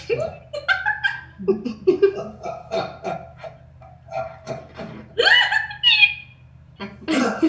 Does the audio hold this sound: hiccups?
yes